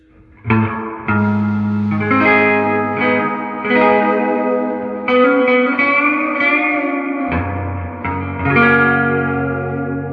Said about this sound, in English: So now let's hear that deluxe reverb with that. Or next to that. Let's see.